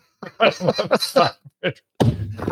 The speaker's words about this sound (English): I'm slapping the table just for some effect in the background.